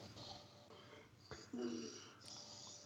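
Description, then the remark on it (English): Heavy, wheezy breathing, steady and noisy for a few seconds, with a louder rasping push partway through and no clear words spoken. “A lot of breathing, not a lot of answers.”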